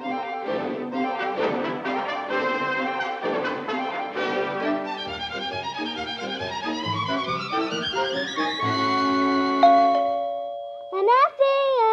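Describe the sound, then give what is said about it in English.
A doorbell chime rings out with a clear sustained tone near the end, following a busy passage of music and sweeping sound effects, then a brief rising squeal. “Betsy, was that the doorbell?”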